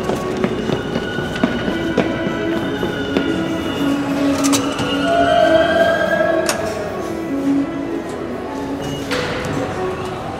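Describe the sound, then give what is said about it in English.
An elevated city train, the L, rolls along with a steady, loud rumble, broken by sharp clanks and rattles while drawn-out metallic wheel squeals rise and fall, with faint voices murmuring underneath. “All right, I gotta hop into the L.”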